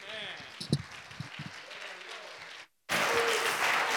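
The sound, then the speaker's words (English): A church audience applauds for the Lord: scattered clapping and murmuring voices, a brief cut to silence, then a loud, dense wall of steady applause that holds to the end. “Déselo más fuerte si es para el Señor.”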